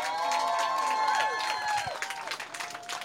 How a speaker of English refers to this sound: Everyone give a really big round of applause to Cooper Andrews!